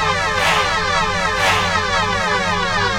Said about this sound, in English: Jeez, you guys hear that? That's a siren.